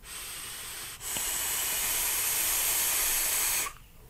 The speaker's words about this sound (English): Good God in heaven, that is just a fantastic vape.